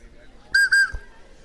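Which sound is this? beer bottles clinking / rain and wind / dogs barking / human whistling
human whistling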